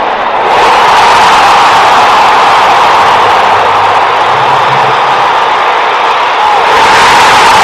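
A huge baseball stadium crowd roars after a great catch and Bryce Harper being put out, with Austin Riley also in the play. The loud, sustained wall of cheering swells almost at once and holds steady for several seconds before easing slightly at the end.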